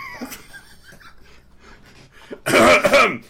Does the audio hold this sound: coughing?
yes